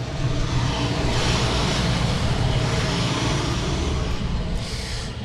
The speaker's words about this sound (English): Holding for truck.